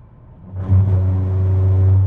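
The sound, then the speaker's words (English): A car's tires roll onto rumble strips as the driver swerves around a dog that was hit on the road, turning the low road hum into a loud, steady buzzing drone that starts abruptly and holds for over a second. No one speaks. “I guess you heard me going over the rumble strips.”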